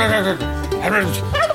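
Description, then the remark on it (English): A turkey gobbles loudly, a rapid, warbling burst of throaty calls that rise and fall over a second and a half, with no talking. “They're nowhere near as lovely as the wonderful and fantastic simple bird that is the turkey.”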